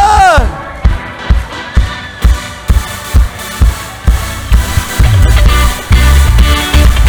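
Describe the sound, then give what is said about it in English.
A crowd claps together in a steady, rhythmic beat, loud, with voices and cheering mixed in, clapping to celebrate a group of people. The noise swells toward the end. “Come on, let's clap. Let's celebrate with these guys.”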